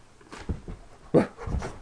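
A dog pants in short, uneven bursts of breathy huffing, fairly quiet, with no voices over it.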